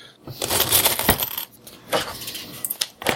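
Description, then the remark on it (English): Small hard might tokens, five per player, clatter onto a table in a quick jumble of bright metallic clicks, several bursts of clinking drops over a few seconds with brief pauses between them. “Your starting might is 5, so everybody take 5 might tokens.”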